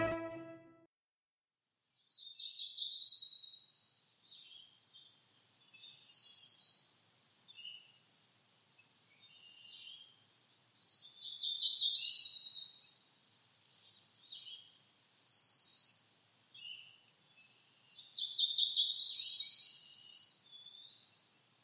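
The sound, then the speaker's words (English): A cerulean warbler, a small songbird of the warbler family about 4.3 inches long, sings its song three times, each a high, buzzy run of rapid notes rising into a trill, clear, with short pauses between phrases and no voices. “today's In Nature segment is about the cerulean warbler”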